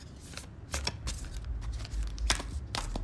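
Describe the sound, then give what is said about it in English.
A gratitude oracle card deck being shuffled, with repeated crisp riffling bursts and soft papery slaps in an irregular rhythm, no voices. “Do you guys like the sound of me shuffling?”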